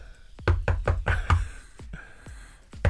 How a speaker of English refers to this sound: That's not Maisie's knuckles on the door, is it?